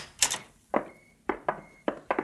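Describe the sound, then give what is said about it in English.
A door opens as someone walks in, with a series of wooden knocks and latch clicks, broken by a thin, steady hinge squeak; no one speaks. “What do you mean, walking in here without knocking?”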